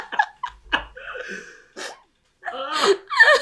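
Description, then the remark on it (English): A person vocally imitates a sneeze: a few gasping inhales building up, a brief pause, then a loud, explosive burst, with no real words spoken. “And he sneezes.”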